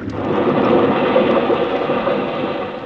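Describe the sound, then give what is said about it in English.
A motor launch, out of control, crashing into rocks: a loud, sustained, rumbling roar of engine and grinding noise that fills the whole stretch without a break, with no voices. “He's out of control. He's heading for the rocks. Crazy nut. He'll crack up.”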